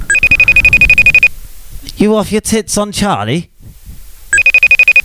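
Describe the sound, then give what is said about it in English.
A mobile phone rings with a rapid, pulsing electronic tone, pauses while a man speaks briefly, then starts ringing again, loud. “That's not R2. That's just my phone.”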